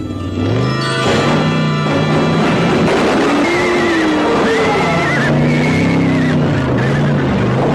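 The engine of a car with no driver roars and revs loudly, its pitch rising and falling, with high tire squeals skidding over it for several seconds, continuous with no one speaking.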